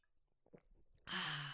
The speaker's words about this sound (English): Sorry, that was me taking a big sip of water.